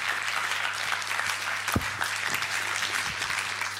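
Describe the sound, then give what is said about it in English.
An audience at a comedy science debate applauding steadily, a dense wash of many hands clapping at an even level throughout, with a low hum underneath and one sharper thump partway through. “Yeah, a round of applause for Atlanta.”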